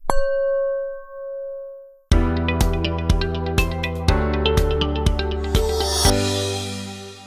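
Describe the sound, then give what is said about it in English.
A gong is struck once and rings out with a sustained tone for about two seconds, then loud rhythmic music with repeated percussive hits takes over. No one speaks. “I think it could be a gong moment.”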